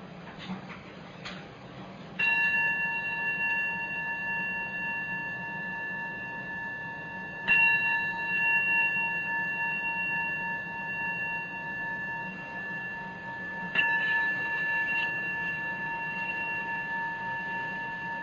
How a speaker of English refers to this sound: And we practice listening to the sound of the bell.